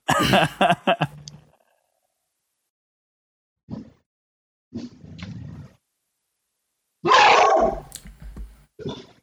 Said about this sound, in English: And then a dog barked